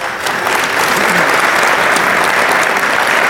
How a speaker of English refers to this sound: Guys, that's about all the time we have, but I'd like to ask everybody to give a big round of applause to our panel.